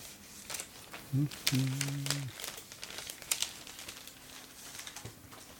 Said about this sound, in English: I believe you got a note. I do have some paper to crinkle over here.